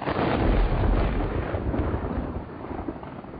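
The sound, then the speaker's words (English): A loud, deep roll of thunder from an approaching storm rumbles continuously, strongest at the start and slowly fading over a few seconds, with no voices. “Maybe we can get out of here ahead of the storm.”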